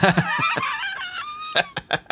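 Chicken clucks and squawks ride over an upbeat 90s-style dance track, with punchy beats and bright tonal lines, loud for a couple of seconds.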